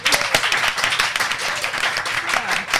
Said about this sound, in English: This makes it live because you're here, you're an audience. So could I have a clap, please?